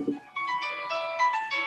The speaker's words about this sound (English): So I bought that on the iTunes store. It's the good old fashioned Nokia.